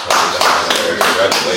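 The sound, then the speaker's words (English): A group of people clap together in a loud, steady rhythm, with about five evenly spaced bursts of applause in quick succession, applauding a man who is getting his own house. “So hey, but one time, bro, clap up the man with the house, bro.”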